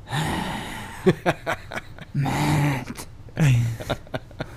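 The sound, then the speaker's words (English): Loud heavy breathing from a person: three long, raspy, voiced exhalations separated by quick, sharp huffs and gasps, repeating in an uneven rhythm with no speech. “You start breathing heavy.”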